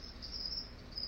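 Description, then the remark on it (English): Crickets chirp in a steady, high-pitched trill, a continuous insect chorus with a low background hum and no voices. “Hey, crickets.”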